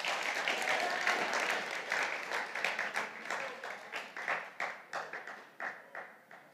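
An audience applauds, a dense patter of many hands that thins after a few seconds into a slower, scattered set of individual claps before dying away.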